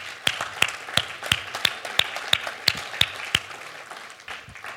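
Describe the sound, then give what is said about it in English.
An audience breaks into a round of applause for the church's media team, with a few sharp, evenly spaced claps standing out above a steady wash of clapping that fades slightly toward the end. “So let's give a round of applause for our media team.”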